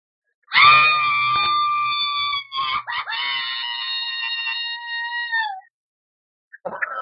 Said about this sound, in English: Wow. I would love that as a stock scream, you know? Was that all right? That was great. I love the little the no in the middle there.